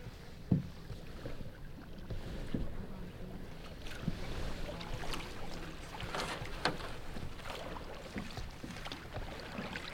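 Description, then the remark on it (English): Paddles dip and pull through calm water from a canoe paddled by two people, one in the bow and one steering from the stern, in duck season, with soft splashes and drips repeating in an uneven rhythm over a faint hiss of wind. “I'm in the bow of the canoe while Lind steers from the stern.”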